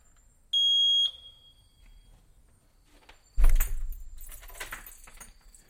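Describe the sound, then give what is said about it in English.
A house doorbell is pressed and gives one short, shrill electronic buzz lasting about half a second, fairly loud. Moments later comes a louder rattling, jangling clatter that slowly fades. “If I press it, it goes and does this noise as long as I hold it down.”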